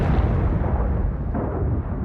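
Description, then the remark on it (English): A 1,000-pound bomb dropped from a plane explodes on a flight deck: a deep, sustained explosive roar rumbles heavily through the low end for two seconds, a loud continuous blast with no voices. “Moments before the blast from his 1,000-pound bomb engulfed his plane.”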